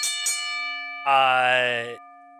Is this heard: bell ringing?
yes